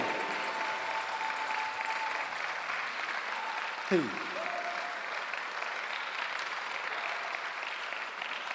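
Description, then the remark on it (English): A church audience claps together as a clap unto the Lord, in sustained, dense applause that stays steady and fairly loud throughout, with a brief sharper burst midway and faint murmuring voices beneath. “This one is a clap unto the Lord.”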